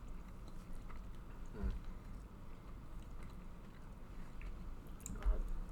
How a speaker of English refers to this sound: It's just a lot of chewing. It very much is. It's a jaw workout if you eat these like on a daily basis.